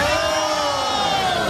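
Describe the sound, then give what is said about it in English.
A large comedy audience shouts and cheers together in a loud, steady roar that fills the whole short stretch, with many voices blending into one dense wall of sound. “Sounds like a resounding yes over here. A resounding agreement.”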